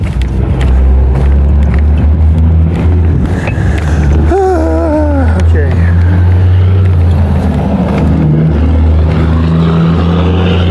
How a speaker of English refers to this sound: That is a loud truck.